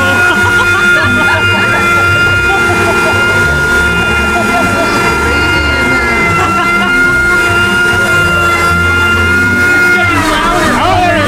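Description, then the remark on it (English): A blender motor runs loudly and steadily for the whole stretch, a dense roaring whine with a constant high-pitched hum, surging briefly near the end. “Do you think we need another quick blend there, or do you think it's good?”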